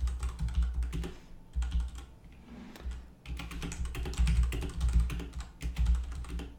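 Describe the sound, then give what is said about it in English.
Rapid clattering keystrokes on a computer keyboard, fairly loud, coming in dense bursts with a few brief pauses, over the steady low rumble of a lawnmower in the background. “What's more annoying, the lawnmower or me typing?”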